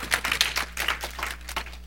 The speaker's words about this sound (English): Somebody needs to give the Lord a hand clap of praise